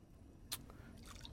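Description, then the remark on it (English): A single crisp drip of water lands, followed by faint, soft watery trickling and squishing sounds at low volume, as empty bottles are filled with water at a faucet in the game Fallout 4 survival mode. No one speaks. “We can fill bottles with water.”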